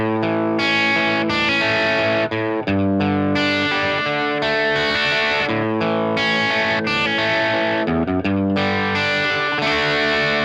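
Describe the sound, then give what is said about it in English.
An electric guitar plays a steady arpeggiated pattern without the Storm effect, notes ringing one after another with a slightly driven, dry tone, loud with no talking over it. “Let's hear it with an arpeggiated style part. First one, No Storm.”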